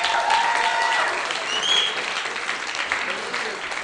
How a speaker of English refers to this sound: Everybody give a round of applause to Tony.